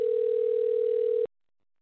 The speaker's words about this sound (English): Okay, I've got one phone which is calling. I don't know which one.